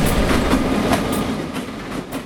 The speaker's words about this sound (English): I'm also an owner here at Spinrail Dune Buggy, North Bend, Oregon, just south of Lakeside. Our house is right here next to our business, and the train tracks run probably 100 feet maybe behind our house, so we hear the train.